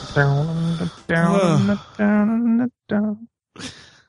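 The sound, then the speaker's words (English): A voiced yawn: drawn-out, moaning vocal sounds with a sliding, wavering pitch, broken into several short stretches with brief pauses between them. “I just yawned.”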